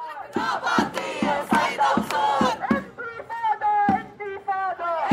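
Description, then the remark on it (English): A crowd of feminists chants together in a loud, rhythmic call during the revolution in Riyad al-Salah, voices rising and falling in unison with sharp accented beats, like a protest march building steady collective energy. “The people you're hearing are a group of feminists who have been leading the revolution in Riyad al-Salah with their chants and movements on a daily basis.”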